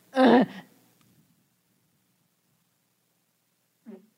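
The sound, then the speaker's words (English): A single loud, buzzy fart bursts out for about half a second, then trails into quiet, with a faint short sound near the end. No one speaks. “I have to fart.”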